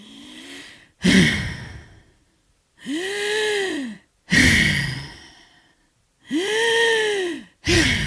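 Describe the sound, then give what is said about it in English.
A nurse's voice imitates the labored, troubled breathing of a COVID patient: harsh gasping inhales alternate with long groaning, sighing exhales in a slow repeating rhythm, fairly loud, with no talking. “Then there was another improvisation in which a nurse mimicked the troubled breathing of a COVID patient like this.”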